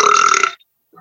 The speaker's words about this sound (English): Sorry. I thought you said you didn't like burping, and you immediately burped right into the mic. So sorry about that. Yeah, it just sometimes when you gotta go, you gotta go.